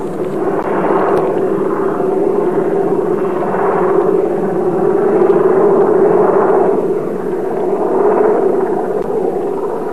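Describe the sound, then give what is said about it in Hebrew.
A steady, loud low-pitched engine drone with a rhythmic pulsing whir of a helicopter passing overhead on Mount Hermon, continuous for the whole stretch with no voices. “זה מסוק מעלינו.”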